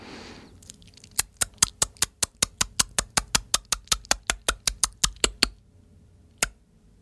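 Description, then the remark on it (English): A person makes a rapid, evenly paced train of about twenty sharp mouth clicks, imitating bat echolocation, then pauses and gives one last click. The clicks are crisp and fairly loud. “Can you repeat the echolocation sound that you presented to us, the clicks?”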